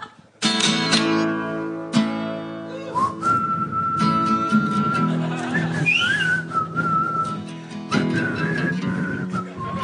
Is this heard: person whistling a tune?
yes